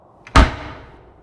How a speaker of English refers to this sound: Or so she thought. The moment she pushed the door with all her strength, the door pushed her back with double that.